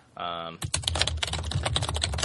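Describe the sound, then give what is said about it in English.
A brief humming tone, then a rapid, steady stream of computer keyboard clicks, fairly loud, continuing to the end. “Your typing is really loud”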